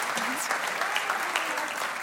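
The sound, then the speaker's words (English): A church audience breaks into a round of applause for a group of people, a dense, steady wash of many hands clapping at once with a faint murmur of voices mixed in. “Can we give them all a round of applause?”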